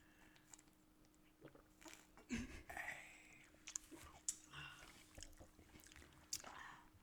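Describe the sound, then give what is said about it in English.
Wet biting and chewing of juicy watermelon, with soft slurpy crunches and irregular smacking clicks over several seconds, fairly quiet and with no talking. “I bought some watermelon for my house, but it's not that sweet. It is very juicy though.”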